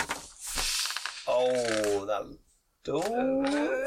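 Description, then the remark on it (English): A burst of clattering as a handful of dice (four yellow dice, two boost dice, a red die and a purple die) is rattled and tumbles onto a table in a tabletop game, filling the first second, followed by drawn-out voices speaking with a brief pause between them. “So you're rolling 4 yellow dice, 2 boost die. A red die, and a purple die.”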